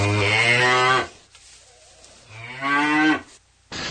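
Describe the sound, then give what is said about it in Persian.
Two long, loud moos from dairy cows, each lasting about a second with a brief pause between, deep and droning with a slight rise in pitch toward the end. “محل پرورش گاوهای شیری”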